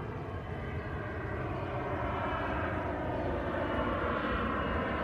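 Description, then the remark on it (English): A steady, broad engine drone from an airplane passing overhead on a sunny morning at Houston Lake, loud and continuous for the whole stretch, with a smooth rumbling wash and no talking. “We have a plane up there going.”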